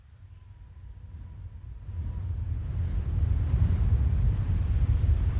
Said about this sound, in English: can you show us what the wind sounded like? Wait for it.